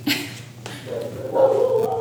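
dog barking loudly

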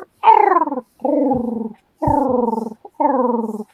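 dog growling

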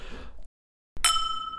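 glasses clinking

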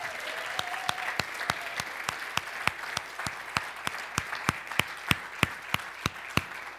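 audience applause

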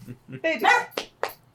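dog whimpering and barking

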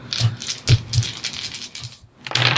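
dice being rolled

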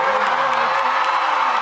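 concert crowd cheering

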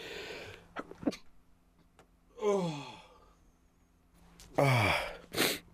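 sneeze

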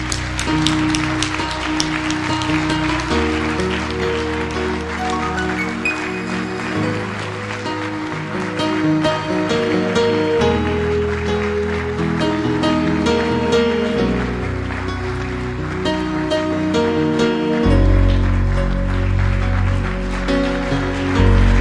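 audience clapping hands

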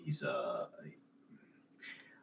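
cat meowing

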